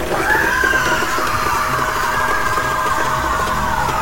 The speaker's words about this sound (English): Retreating from the blooming corona of my emergent dream, the Scream Eater took a step back. A monstrous face upon the breastplate of its armor yawned wide and loosed a terrible scream.